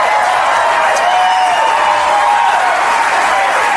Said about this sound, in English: Wasn't a standing ovation, but still a lot of clapping. No, he couldn't even get started because not even the people in the room knew he was going to come out looking all dapper.